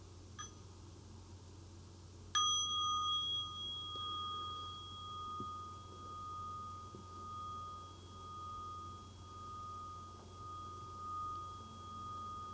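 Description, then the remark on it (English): A single strike of a mindfulness bell, rung once as a practice bell, rings out sharply, then sustains as a clear, pure tone that slowly fades over several seconds against a quiet low hum, with no voices. “I'll be inviting the bell of mindfulness on occasion to slow me down a little bit”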